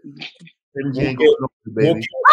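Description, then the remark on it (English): A man's voice mimics a dog, letting out a few loud, gruff, drawn-out barks and growls in quick succession, with nothing else in the background. “got a day to bark to you, nigga.”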